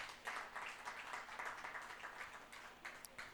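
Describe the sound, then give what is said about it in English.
A church audience applauds together for Jesus, a dense, steady patter of many hands clapping that carries on throughout, sounding somewhat muted, with no voices standing out. “Give Jesus a clap of rain.”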